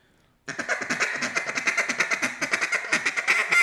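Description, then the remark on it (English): A duck call blown with the sound made in the throat, pouring out a rapid, steady run of flat, buzzy quacks for about three seconds after a brief moment of quiet. “Now, if you get a, you get that flat quack, right? That. Yeah, see, that's all throat.”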